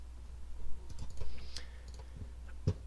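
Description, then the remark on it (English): Soft, irregular clicks of typing on a computer keyboard, a quick scattered burst of keystrokes with one slightly louder tap near the end, no voices; someone typing in an event chat. “I'm just typing in the event chat.”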